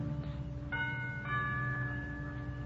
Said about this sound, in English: I move across the road, push open the heavy iron gates, hurry up the path to the front door of the villa, and I lean on the bell.